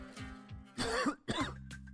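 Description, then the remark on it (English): Two harsh, genuine coughs burst out in quick succession, each a short rasping blast, with a low background hum underneath and no talking. “That's actually a genuine cough, but it leads me beautifully to my next story.”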